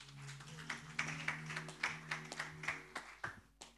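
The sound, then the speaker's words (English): A church audience claps their hands in a steady, rhythmic beat, about two sharp claps per second, over a low sustained hum, with no talking. “You didn't clap your hands, church.”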